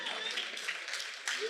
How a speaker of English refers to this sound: You're gonna stop clapping for this fourth one.